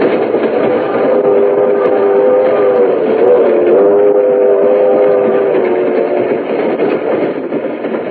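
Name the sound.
train riding on rails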